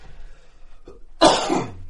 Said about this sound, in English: Well, I'm about to hold my cough back.